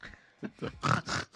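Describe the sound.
A man, a band's vocalist, imitates a pig, with a few short grunting snorts building into two loud, harsh squeals, all in about a second and a half with no talking.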